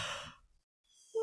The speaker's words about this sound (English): We're both yawning. I know. Go hard. Everybody's yawning at this podcast.